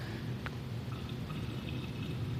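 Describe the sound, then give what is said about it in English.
Water bubbling steadily inside a glass dab rig as someone inhales from it, a continuous low gurgle that keeps up throughout with no talking, and a brief sharp click near the start. “You hold it against the glass. Yeah, see, it's bubbling.”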